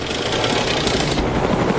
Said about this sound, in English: I'm loving the copter, we're up so high in the night sky.